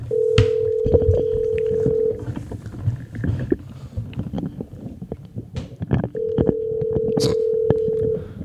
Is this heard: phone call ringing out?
yes